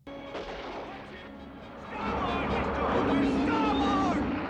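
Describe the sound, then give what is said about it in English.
The original great white shark sound effect from the 1975 film Jaws, heard in the scene where Quint puts the second barrel into the shark: a steady, rushing roar like wind through a tunnel, swelling louder about halfway through and holding, with faint muffled voice-like tones drifting underneath. “So if you heard it, it's sort of like this, it really kind of has that faint roaring sound of a wind tunnel, kind of what Peter Benchley was describing.”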